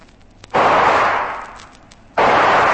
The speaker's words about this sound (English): We should have guessed he'd shoot.